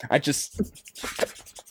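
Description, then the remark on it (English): A razor shaves a knee in several quick, rasping strokes, fairly loud, with a rough back-and-forth rhythm like sandpaper rubbing. “It's like, so you get your knee, you start shaving. I shave it like I'm sanding, like sanding paper.”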